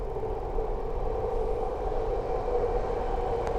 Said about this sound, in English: Let's see. Oh, my train appears to be approaching.